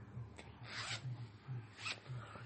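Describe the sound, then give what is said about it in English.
A quick, raspy ratcheting sound of the tiny plastic zippers on a necktie being zipped comes in two short bursts over a low background hum. “That was my zipper tie.”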